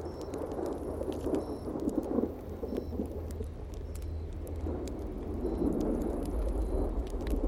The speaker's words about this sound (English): There's the first one. Way off in the distance. That first little roll of thunder.